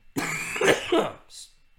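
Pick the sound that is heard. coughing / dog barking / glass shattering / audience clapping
coughing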